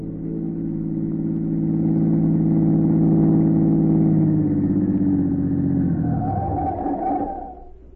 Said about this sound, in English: A minute or two later, a black car, its curtains drawn, pulled to the curb.